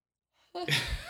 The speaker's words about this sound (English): I just had a big yawn.